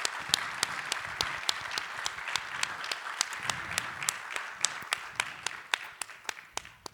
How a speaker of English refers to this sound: And just for right now, I'm going to go ahead and welcome all the women to the stage. Can y'all just give them a round of applause as they come on up? Y'all can come on up here.